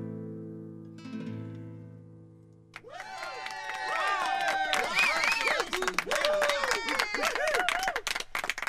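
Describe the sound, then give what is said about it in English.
A held musical chord fades out, then a loud crowd erupts into sustained applause and cheering, with dense clapping and many overlapping whoops and shouts that continue to the end. “A real crowd?”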